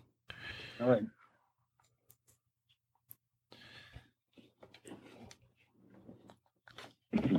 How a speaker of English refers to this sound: And, of course, the delicious crunchy chocolate. Mm-hmm. That's a crunchy cookie.